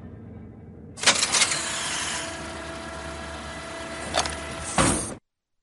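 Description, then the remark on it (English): A Pelican dropship's bay door opens with a loud mechanical hiss and whir over a steady engine hum, with heavy clunks as it starts and again as it locks open. “Pelican crew, you may now open your bay door and slowly exit the vehicle.”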